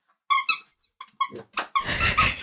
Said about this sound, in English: We want to see a real life throw. Will you throw that squeaky toy?